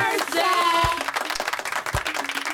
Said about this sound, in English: So let's give her a round of applause and a happy birthday.